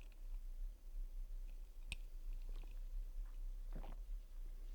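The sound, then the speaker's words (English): Someone takes a quiet sip of coffee during the taste step of a 5-4-3-2-1 meditation, a soft slurp near the end preceded by a few small mouth clicks over a low, steady background hum. No one speaks. “So you can take a sip of that delicious. Yeah, I love that. Smelling coffee.”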